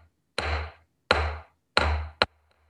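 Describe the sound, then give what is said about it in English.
A wooden block at a Zen Center is struck four times to call people to practice, each hard, sharp knock ringing briefly before fading; the strikes come at an even pace until the last follows quickly after the third. “And wooden block, you hit the block, you know, boom, I've done this also many times.”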